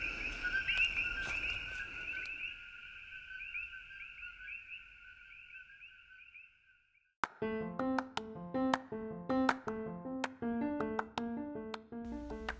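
A frog chirps in a steady, high, continuous trill for several seconds, fading out, before a brief silence and then a plucked musical melody begins.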